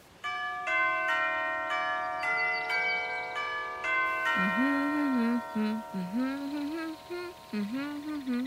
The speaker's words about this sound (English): Do I just, knock? Try the doorbell